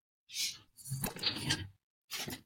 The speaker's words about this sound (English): Just moving some chairs. There you go.